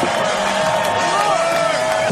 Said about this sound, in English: And a big roar from the crowd as they come past.